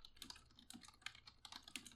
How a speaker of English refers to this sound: That's me typing to Six right now.